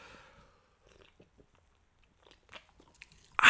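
A drink being opened: faint clicks and handling sounds over a few seconds, then a sudden loud, sharp pop-and-hiss burst right at the end. No one speaks.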